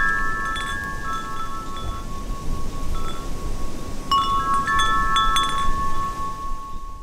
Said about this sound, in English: That was some wind chimes from my parents' house and some running water from a creek right near my apartment.